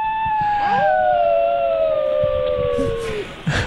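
A singing dog lets out a single long, clear howl that holds steady and slowly slides downward in pitch, loud, ending abruptly after a few seconds.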